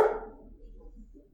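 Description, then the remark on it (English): A single sharp, loud dog bark right at the start, quickly fading into a low background hum and faint murmurs. “barking at butterfly farts again, so. Stupid dog.”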